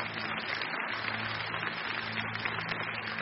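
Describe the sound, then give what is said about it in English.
An audience at a morning service cheers and claps in a steady, dense wash of crowd noise that holds at an even level for a few seconds, with no single voice standing out. “I mean, yeah, you can cheer for that.”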